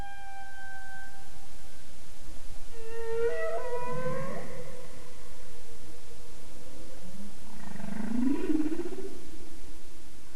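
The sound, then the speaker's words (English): A male whale sings a series of long, tonal moans and rising whoops, some harmonic and wavering, others sweeping upward, heard clearly against a steady underwater hiss with no talking. “On breeding grounds, and throughout the migratory corridor, but predominantly on breeding grounds, male whales produce these long, extremely complex, repetitive, and structured acoustic signals that we call songs.”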